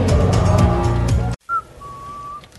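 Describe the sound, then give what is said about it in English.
Lively piano music from dueling pianists at the P&E cuts off abruptly, then a person whistles: a brief note followed by a long, steady, clear tone held for about a second. “That was a very nice whistle, by the way.”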